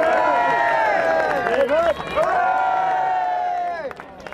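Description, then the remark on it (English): A large crowd, led on by Frankie Fraser, cheers and shouts loudly for Reggie as he leaves to go back to prison, many voices overlapping in a continuous roar with rising and falling yells, tapering off toward the end. “Led on by Frankie Fraser, crowds cheered for Reggie as he left to go back to prison.”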